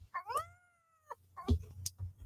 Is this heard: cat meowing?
yes